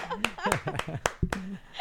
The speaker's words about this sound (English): I like how they abruptly stop clapping.